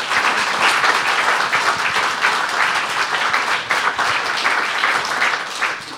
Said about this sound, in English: All right. Well, thank you so much for being on the show. Round of applause.